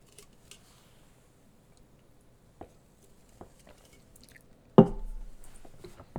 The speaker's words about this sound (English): I just did it again. Now I'm really hyper aware of my smacking sounds.